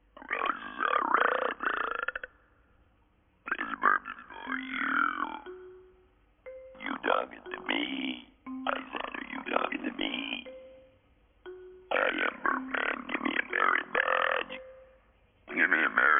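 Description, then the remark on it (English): A series of loud, drawn-out cartoon belches, five or six long rumbling bursts separated by short pauses, close and prominent with a voice-like, croaking quality. “In this episode, Heifer and Filbert are in the scouts, and Heifer kind of discovers that he has this belching talent that makes everybody really interested in him,”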